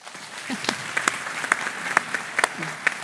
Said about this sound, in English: With commendable punctuality, Miss Goldstein appeared on the platform. The audience loudly demonstrated her arrival by applause.